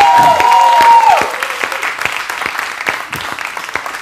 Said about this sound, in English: Hey, Sandy Hills family, let's give our first-time guests another round of applause.